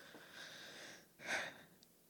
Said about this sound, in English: I'm sorry for sniffling all on this microphone, man.